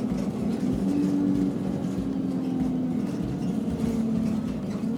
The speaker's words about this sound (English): A twinge of excitement came over me as the bus downshifted.